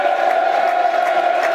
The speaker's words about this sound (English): Taking the applause of the East Stands, Ian Fleming. Look, that's what stars do. They milk their applause. I like it.